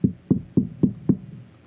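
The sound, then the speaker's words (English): Five firm knocks on a wooden door in a steady, even rhythm, fairly loud, with dull low thuds and no voices. “I'll knock on the door.”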